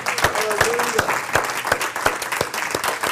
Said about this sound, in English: Shall we clap our hands for Jesus for that?